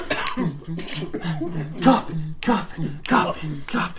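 A run of short, close-up coughs and throat-clearing noises, repeating at uneven intervals over a few seconds, with low murmured vocal sounds in between.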